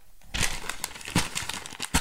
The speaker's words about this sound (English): Hear that crumpling of that paper?